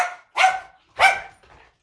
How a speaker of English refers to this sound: Okay, so you're gonna hear her bark. Oops. Okay, hold on, you guys. You can, not her bark, but Lyra's bark.